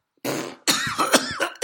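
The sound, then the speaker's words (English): A person coughs hard several times in a rough, raspy fit after inhaling smoke, the bursts close together and loud, with a strained, hacking quality. “Smoking if you ain't coughing.”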